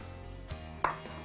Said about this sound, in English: First we need, of course, sushi grade ahi tuna, right? We're gonna dice that tuna, okay? Place it in a bowl.